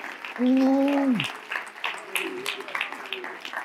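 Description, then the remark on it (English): A church audience claps hands in a steady scattered patter during a morning service, moderately loud, while a voice shouts a long drawn-out call near the start and other voices murmur underneath. “Clap your hands unto the Lord this morning.”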